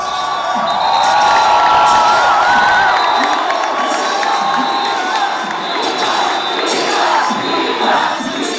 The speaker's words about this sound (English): Then, piercing through the shouts, the claps, and conversations, you hear the song.